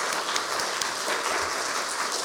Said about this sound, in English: All right, I think we deserve a little bit of a round of applause.